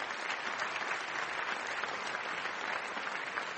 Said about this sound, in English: And I'd just like to invite one more round of applause for Robert Rosenkrantz.